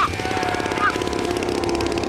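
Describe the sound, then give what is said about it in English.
The small engine of a grandfather's detailed model airplane runs steadily, a loud, rapid buzzing rattle with a harsh mechanical drone that holds constant throughout. “It's really perfect in every detail. He's really into it, especially this engine thing.”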